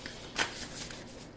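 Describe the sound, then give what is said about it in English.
Tarot cards being shuffled while drawing cards for a reading for Leo, a soft papery riffle with a brighter flick near the start followed by steady rustling, fairly quiet, with no voices. “How many cards is this? This is three cards.”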